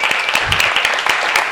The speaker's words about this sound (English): And can we get another round of applause for those wonderful essays?